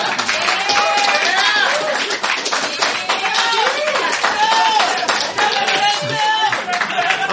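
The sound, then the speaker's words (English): A crowd bursts into sustained, loud applause as a vote on whether the Nerdalogs website should switch to nerdalogs.website, dense rapid clapping running steadily throughout, with whoops and cheering voices rising above it. “So, by applause, should the Nerdalogs website switch to nerdalogs.website?”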